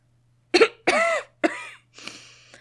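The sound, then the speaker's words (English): A woman coughs four times in quick succession, fairly loud, with short pauses between the hoarse, breathy bursts, then a faint catch of breath at the end. “She sniffs and holds back tears, but they come nonetheless. She coughs.”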